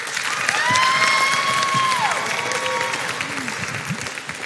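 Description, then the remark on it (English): A room full of people claps steadily to welcome a speaker about to share a short story from her summer, a dense wash of applause with a few whoops and cheers rising above it, loud throughout. “If you could welcome her with a round of applause.”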